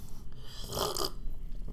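A short, wet slurp of Pepsi Max, about a third of a second of airy, gurgling noise rising out of a quiet background, with no talking.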